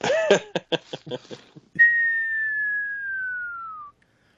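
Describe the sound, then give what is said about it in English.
A few quick, choppy vocal bursts, then someone whistles one long, clear tone that slowly slides downward for about two seconds, imitating a falling bomb, and stops abruptly. “Like, you'd hear the bomb coming in like that.”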